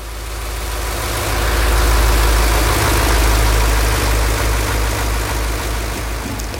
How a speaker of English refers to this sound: And what you heard just there was the sound of the engine. The engine that keeps everything running. It took me ages to work out what it does, but yeah, that's what that was.